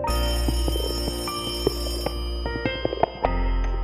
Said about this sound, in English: The phone rang. Something was wrong, very wrong.